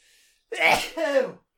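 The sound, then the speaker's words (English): A single loud sneeze: a sharp breathy burst followed by a short voiced tail, then silence. A faint hiss precedes it. “God bless you.”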